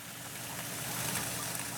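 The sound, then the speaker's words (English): Water splashes and trickles steadily from small fountains in front of a memorial wall with 23 plaques, one for each victim of the El Paso shooting, a continuous, even hiss of falling water at moderate volume with no voices present. “Water gently cascades from small fountains in front of a wall with 23 plaques, one for each victim of the El Paso shooting.”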